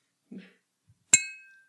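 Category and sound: signal or alarm, bell being rung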